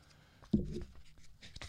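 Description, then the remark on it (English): Paper pages of a book placed by the microphone rustle and crinkle, a loud crisp shuffle followed by softer scattered crackles and brushing sounds over under two seconds, with no voices. “Hear the paper.”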